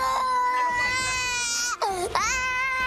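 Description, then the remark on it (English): A five-year-old boy, recorded in police video footage, cries loudly in a sustained, high-pitched wail that breaks briefly, swoops down in pitch, then climbs back into a strained, continuous cry. “When the boy doesn't stop crying, one officer screams just inches from his face.”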